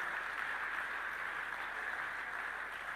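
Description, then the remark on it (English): Steady, dense clapping from a church audience, a continuous wash of many hands at an even loudness with no pauses and no voices standing out. “Oh, you're clapping and singing, housewife.”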